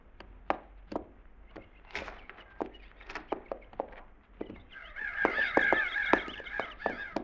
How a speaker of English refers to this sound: Them crows we flushed back there went back to eating again.